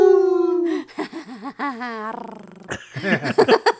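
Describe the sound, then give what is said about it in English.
Several people howl like wolves together, long sustained wavering cries that sometimes dip and rise, fairly loud, breaking into a few short yips near the end. “Howling at the moon.”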